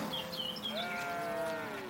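A single drawn-out cow moo swells and slowly falls in pitch, while a few high bird chirps flutter at the start over faint outdoor background noise, from a recording of country sounds. No one speaks.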